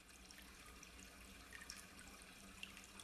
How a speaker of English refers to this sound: In the background, you can hear the trickle of the water. It is designed to close out from under the tabernacle here and divides into three streams, irrigating the other parts of the area where you have living plants.